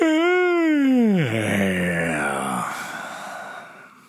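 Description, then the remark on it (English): A long, loud human yawn: a voiced tone that slides steadily down in pitch, then trails off into a breathy exhale over about four seconds, with no talking. “That was a satisfying yawn.”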